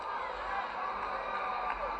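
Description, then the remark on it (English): A large crowd at a wrestling match at Joe Louis Arena, during Hercules Hernandez versus Tony Atlas, cheers and roars steadily throughout, a dense wash of voices with scattered shouts and whoops rising above the din. “crowd appreciating it.”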